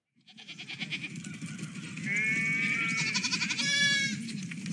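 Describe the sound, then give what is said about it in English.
Sheep bleat loudly, several wavering cries overlapping in the second half, over a steady low rumble of background noise with no talking. “No sheep were harmed in the recording of this podcast.”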